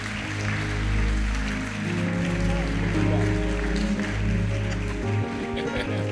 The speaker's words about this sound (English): Clap your hands for your father, your bishop, Flynn Johnson.